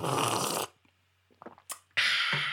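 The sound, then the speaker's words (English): A mouth-made sound effect for a show, imitating someone drinking coffee: a loud, airy slurp, a pause with a few small wet clicks and a sip, then another loud breathy slurp. No talking. “So I either make them myself, or I have some, you know, if I want the sound of me drinking coffee, I might go like this.”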